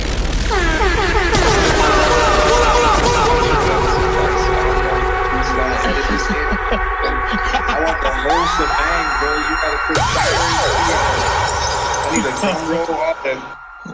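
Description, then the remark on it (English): A loud barrage of blaring air horn blasts layered over one another, joined by rising siren-like sweeps and booming hits, continuing for the whole stretch with no talking. “Can we get those air horns, man?”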